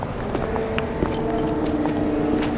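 A short jingle of keys as a room key is handed over, a few light metallic clinks scattered over a couple of seconds against a steady low background hum, with no one speaking.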